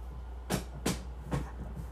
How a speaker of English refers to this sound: I'm gonna put the footrest up in my chair